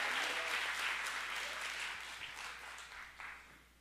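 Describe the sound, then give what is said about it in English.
A large crowd claps enthusiastically in praise of the Lord, dense, sustained applause that gradually tapers off, with a few scattered claps lingering at the end. “One more time, give the Lord a great hand clap of praise.”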